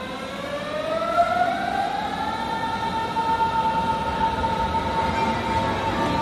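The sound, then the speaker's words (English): A metro train in Berlin accelerates with a rising electric motor whine over a steady, loud rumble of wheels and carriage noise, with no talking. “Past the street musicians and all the various metro stations I have to go through, I'm traveling to meet a fellow American who has lived in Berlin for years.”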